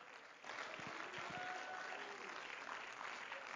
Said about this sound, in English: Oh, praise the Lord. Somebody give a hand clap of praise to Him.